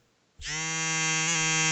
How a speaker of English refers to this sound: There you go. Now that's me calling, I bet. Calling me on the phone, nigga. This is the phone.